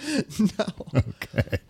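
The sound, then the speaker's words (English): A quick series of short, throaty coughs from a person with allergies, about half a dozen rough bursts in close succession, moderately loud. “Excuse me for coughing.”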